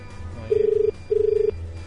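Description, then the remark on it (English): A telephone rings unanswered: one double ring of two short, warbling tone bursts heard down the line, clear and steady against a low background hum, with no one speaking. “Gee, you'd think they'd be able to pick up the phone, wouldn't you?”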